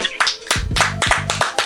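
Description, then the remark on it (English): A few people clap their hands in a quick, uneven burst of applause for a special guest, sharp, while a voice talks and laughs faintly underneath. “Clap it up for him.”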